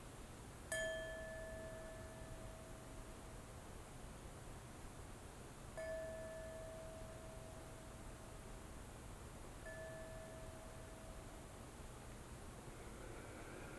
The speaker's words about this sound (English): So I just want to sound the bell just for a minute and just invite you to listen to it.